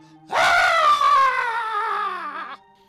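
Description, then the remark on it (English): A man tied to a bed that is set ablaze lets out a single long, agonized scream, loud, held for about two seconds with its pitch slowly sinking before it cuts off. No other sounds accompany it. “They set the bed ablaze, and the man screams in agony as the bed ignites.”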